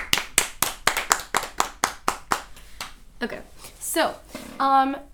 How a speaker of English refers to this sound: I think we should clap again.